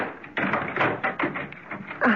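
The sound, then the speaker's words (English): A door being unlocked and opened: a quick run of close, irregular clicks, clunks and rattles, ending in a slightly louder knock of the door swinging, with no voices. “Just a sec. The door's locked.”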